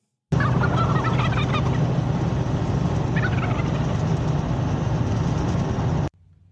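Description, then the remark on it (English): A flock of turkeys gobbles loudly and nearly nonstop for about six seconds, with sharper rattling gobbles bursting out near the start and again midway over a dense, noisy background. “All right, it's Thanksgiving. Here come the birds, everybody.”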